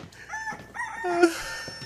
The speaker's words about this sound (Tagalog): Nandito na ako sa Maynila at lahat-lahat, sinusundan pa rin ako ng mga manok. Ito mga kapitbahay ni Changlorna para nagpapaaral ng mga manok eh. Napakadami.